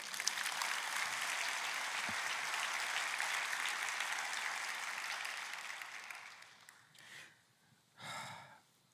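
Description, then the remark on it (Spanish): Sustained applause from a crowd, a dense steady clatter of many hands that gradually thins and fades out around seven seconds, followed by two brief breathy bursts. “Dar un aplauso.”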